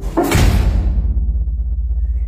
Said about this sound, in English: That's a reassuring sound. And what an ominous sound that door is. Oh, yes. It was a real boom.